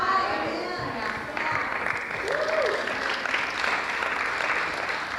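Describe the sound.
An audience claps steadily and densely for several seconds, a loud continuous wash of hand claps with crowd noise and a few voices mixed in.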